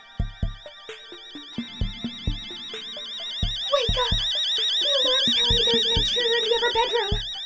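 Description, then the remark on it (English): A home security alarm wails with a continuous high, warbling electronic tone. Heavy rhythmic thumps pound underneath, and the sound grows busier and louder in the second half. “Shit, I guess it was worth spending all that money on the alarm system after all, you think to yourself.”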